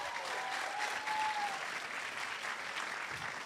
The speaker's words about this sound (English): They keep clapping